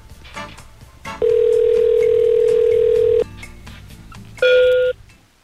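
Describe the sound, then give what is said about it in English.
A telephone dial tone while calling the request line: a steady, mid-pitched tone holds loudly for about two seconds, then a shorter, brighter tone sounds after a pause, over a faint murmur of background noise. “Calling the request line, of course.”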